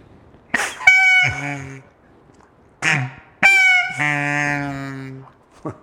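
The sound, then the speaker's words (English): A goose call is blown twice, each blast opening with a breathy rush before a loud, nasal honk that cracks down into a lower, buzzy tone, with short pauses between. “That goose call.”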